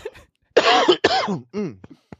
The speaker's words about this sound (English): sorry, see, doing his voice makes me cough.